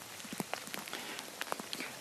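Soft, steady rain pattering down in a graveyard, with a continuous hiss broken by scattered, irregular drips and taps of individual drops landing on surfaces. No voices are heard.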